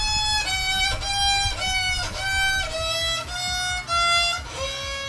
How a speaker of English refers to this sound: At number 6, bad violin playing.